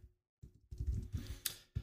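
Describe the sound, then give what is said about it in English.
Sharp clicks of a loud computer mouse, several in an irregular run after a brief silence, with a faint background hum and no talking, as someone gathers information on two actors. “People at home can hear my loud-ass mouse click as I gather information on these two actors.”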